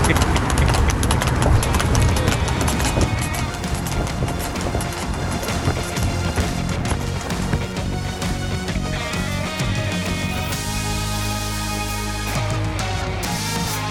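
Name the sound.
horse hooves clip-clopping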